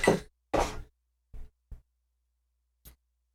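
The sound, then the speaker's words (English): A shot glass dropped into a drink and slammed down: two loud, close glassy thuds in quick succession, then a few quieter scattered knocks, with no talking. “Yeah, we're going to pour it in and slam it.”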